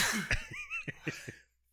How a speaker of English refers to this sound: Oh, shit. You're all infected now. I'm going to die. I'm wiping on everything. I want to die. You just sneezed all over everything I own.